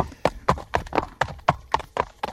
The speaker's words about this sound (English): And oh, we're at the OK Boomer stable, and some of our horses are trotting around.